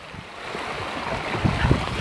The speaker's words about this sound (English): Another river. That's by the sidewalk. I had to jump this. Can you hear it?